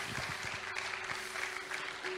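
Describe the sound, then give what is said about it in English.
A crowd claps steadily, a dense wash of overlapping handclaps holding at an even loudness throughout, with a faint steady hum underneath and no voices. “Yeah, you can clap for that.”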